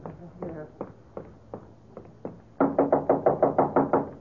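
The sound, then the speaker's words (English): Knocking on an office door in a museum: spaced, moderate raps at first, then a sudden burst of loud, rapid pounding, about a dozen quick blows in a steady rhythm. “Open up, Gallinari. Open the door.”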